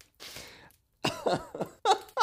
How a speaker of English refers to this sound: What? I've never heard that second noise. I mean, she's just clearing... She's clearing her throat.